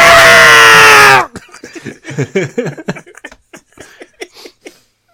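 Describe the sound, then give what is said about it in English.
A person lets out a loud, shrill cartoon-cat pain scream lasting about a second, cut off abruptly, followed by bursts of laughter. “they do a Tom scream from Tom and Jerry”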